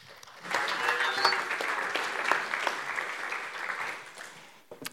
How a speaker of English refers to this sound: So why don't we give a round of applause